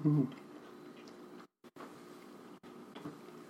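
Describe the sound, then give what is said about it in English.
Chewing of crunchy, flaky, dry aged cheese with salt crystals, with soft wet mouth sounds and brief gaps between bites, preceded by a short low voiced hum at the start. “A little bit of crunch.”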